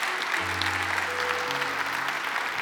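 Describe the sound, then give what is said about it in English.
An audience at Northridge Church applauds new members joining the church in a steady, dense wash of clapping that stays even throughout, with a low sustained hum of instruments or organ tones underneath and no clear speech. “And if you're, I know you just clapped, but if you're really excited about people who make Northridge their family, would you just give them a big, big”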